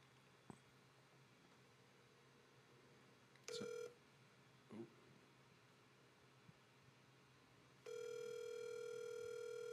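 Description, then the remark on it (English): An outgoing phone call to a friend ringing on the line: a brief electronic tone, a few seconds of faint background hiss with a soft knock, then a steady, prominent ringback tone sustained to the end. “It's ringing.”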